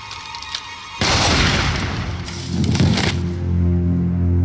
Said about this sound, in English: Gunshot.